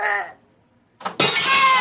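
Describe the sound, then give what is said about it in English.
A short clink is followed by a brief pause, then a loud, bright crash as a glass bottle is thrown through a building's window, shattering and ringing out for nearly a second, clear with no talking. “Stop smashing those windows.”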